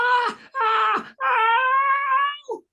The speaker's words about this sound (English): The hot halogen bulbs were burning his face and hands and butt and balls and knees. He screamed.